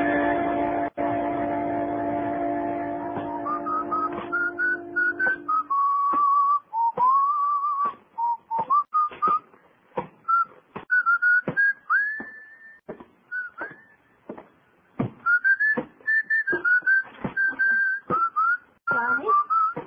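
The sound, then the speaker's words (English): A person whistles a lively, wandering tune, the melody rising and dipping in quick phrases, starting over a fading musical chord and then continuing alone. “You still remember my whistle, huh?”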